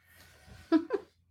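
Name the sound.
cat meowing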